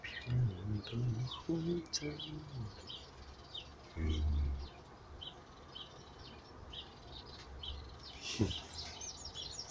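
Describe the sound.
Small birds chirp and tweet in scattered bursts against a steady outdoor background, with some low voice-like murmuring early on and a few brief thumps.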